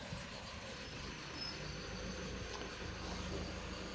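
A U-Haul truck engine rumbles steadily for the whole stretch, a deep, even drone with a faint airy hiss above it and no voices.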